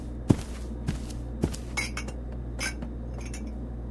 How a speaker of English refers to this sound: I'm starving. I'm making myself a sandwich.